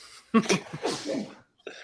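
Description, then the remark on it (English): A single loud sneeze bursts out sharply and trails off in a voiced, breathy tail, followed by a short pause and a faint rustle. “Bless you. Thank you.”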